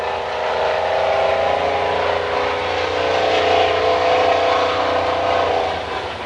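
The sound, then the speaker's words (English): A loud new engine, being shown off, roars and revs steadily, its throaty drone swelling slightly in pitch midway before easing off near the end, with no voices present. “It's somebody showing off a new engine.”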